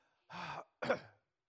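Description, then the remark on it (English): Two short, raspy bursts of coughing and throat clearing in a room filled with smoke, separated by a brief pause, with no talking. “Is anyone else not coughing in here?”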